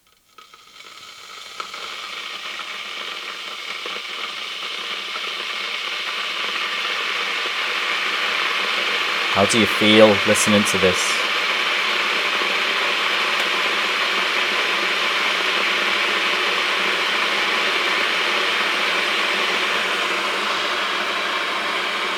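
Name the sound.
electric kettle heating water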